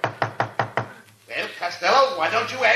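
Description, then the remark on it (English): Five quick, evenly spaced knocks rap on a door, then a voice begins talking right after the knocking stops. “Well, Costello, why don't you answer the door?”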